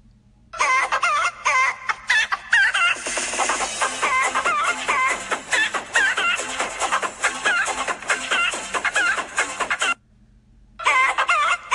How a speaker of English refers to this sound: I haven't talked to you in a bit, and I wanted to send you this groovy chicken wake-up song. Here goes.